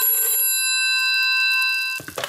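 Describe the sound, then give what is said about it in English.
A telephone bell rings in one steady, high metallic burst lasting about two seconds, then cuts off abruptly, followed by a brief clattering noise. “I hate telephones ringing when I'm beginning to get nervous.”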